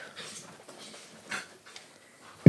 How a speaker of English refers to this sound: Wiener dogs are fighting.